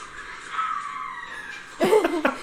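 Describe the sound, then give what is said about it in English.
Women tennis players Serena and Sharapova shriek while hitting the ball: a long drawn-out high-pitched wail, then two louder, sharper cries in quick succession, strained, with no talking. “She's like yelling. That was Serena and Sharapova.”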